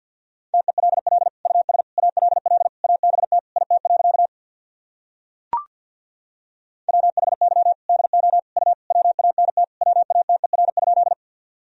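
Rapid Morse code at 50 words per minute sending practice sentences built from the top 200 words and abbreviations: a steady mid-pitched tone keyed in fast dots and dashes, two long bursts of sending separated by a pause with a single brief click, and no voices.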